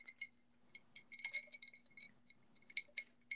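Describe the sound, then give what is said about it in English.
Ice cubes clink repeatedly against a glass of iced hazelnut-flavored coffee with French vanilla creamer in quick, irregular bursts of bright, high-pitched taps while the drink is tilted for a sip, with a faint steady hum underneath and no talking. “So, I'm going to give you guys a little... Ooh. Then, a little sip.”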